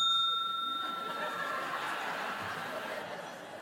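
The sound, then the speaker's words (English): A single bright bell rings once near the start of a debate, its clear tone fading slowly over a few seconds against a soft background of murmur. “When there's a speaker on, if the other team wants to bring up a point of information, they can do so after the first bell. but not after the second bell.”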